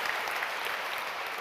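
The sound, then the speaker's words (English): A crowd applauds a worship team steadily, dense overlapping clapping filling the space at a consistent level with no voices standing out. “We give these guys a big round of applause because they're amazing.”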